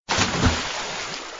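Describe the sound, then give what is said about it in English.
A single loud splash of something jumping into the sea hits suddenly and then fizzles out into a hissing, bubbling wash of spray over the next second. “The monsters jump right into the sea.”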